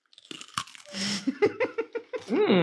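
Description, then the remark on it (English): Loud crunching as a crisp snack is bitten and chewed, a burst of sharp cracks followed by a quick run of rhythmic chews, ending with a brief appreciative hum. “Nice crunch. Do you hear it? Because it's really loud.”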